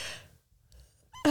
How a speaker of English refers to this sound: As I yawn, bored as shit.